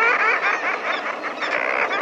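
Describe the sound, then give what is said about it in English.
A dense chorus of raucous, laughter-like calls from a nesting colony of common murres on narrow ledges high on a steep sea cliff, above the crash of ocean waves, many overlapping voices churning continuously and loudly with no pauses. “The voices belong to birds, to a nesting colony of common murres, standing on narrow ledges high on the steep face of a sea cliff.”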